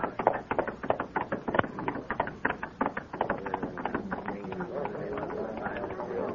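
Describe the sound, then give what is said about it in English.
Rapid, rhythmic hoofbeats clip-clop as a rider approaches on horseback, loud and steady at first, then continuing more softly beneath indistinct voices and background commotion. “There he is! Riding the horse!”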